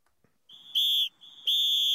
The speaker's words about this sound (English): That was a loud whistle.